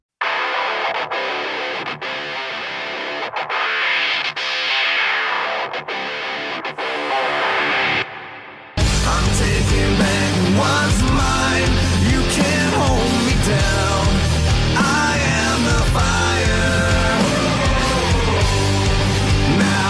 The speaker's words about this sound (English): And his most recent theme that he had right before Honor No More is the one we'll talk about here.